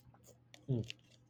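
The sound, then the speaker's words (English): A person drinks water with a single swallow, a short throaty gulp surrounded by faint wet mouth clicks and smacks; otherwise quiet. “But, excuse me, I need to get some water.”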